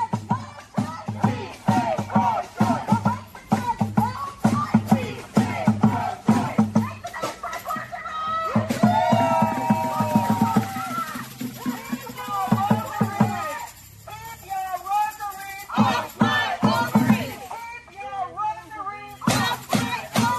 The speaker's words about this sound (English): What they're screaming and yelling is, "Keep your rosaries off my ovaries."